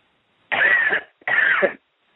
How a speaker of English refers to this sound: Now just take a deep cough and they'll all come out.